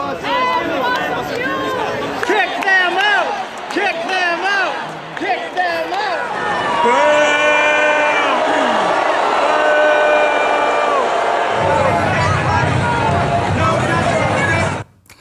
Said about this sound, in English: Watch. People are booing at them, is what you hear.